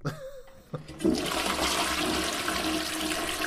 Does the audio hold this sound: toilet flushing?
yes